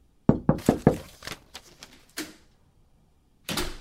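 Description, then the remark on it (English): A quick burst of four loud knocks on a door, followed by several softer taps and thuds, then a short rough clunk after a pause. No one speaks. “the purpose of a knock is not only to alert people in the room to your presence, but to also ask permission to enter said room.”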